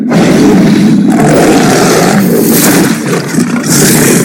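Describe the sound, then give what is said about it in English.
A loud monstrous creature roar sound effect, deep and raspy, sustained for several seconds with a brief dip partway through before surging again. No talking. “Listen to this motherfucker roar.”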